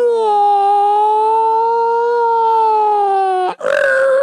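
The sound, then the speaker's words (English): A voice imitates an old-fashioned police siren, holding one long, loud, wavering wail for several seconds before breaking off into a rougher, shorter vocal burst. “They had the old-fashioned siren that went...”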